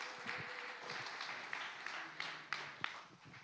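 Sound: audience round of applause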